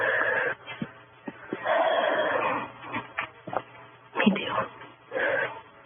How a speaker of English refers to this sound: It still seems pretty quiet, but the only thing I can hear is my dog panting.